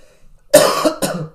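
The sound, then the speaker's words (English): Two harsh, congested-sounding sinus coughs in quick succession, loud, with a brief pause between them and no talking. “Sorry, that's not a COVID cough. That's a sinus cough.”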